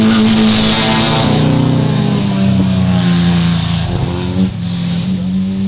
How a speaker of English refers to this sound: We've got the little Porsche being hotly pursued by a WRX camera car.